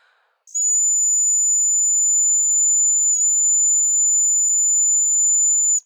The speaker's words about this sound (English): The only direction she gave us was that we should use the sound of the whistle either as a main element or a sole element in the composition. So this was quite challenging because, the sound of the whistle is really particular, really limited,